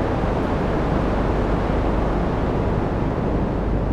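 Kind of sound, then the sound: nature, ocean waves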